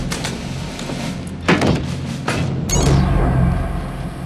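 A door thuds a couple of times in quick succession, followed by a heavier, longer rumbling impact that trails off over a low, steady background hum. No voices.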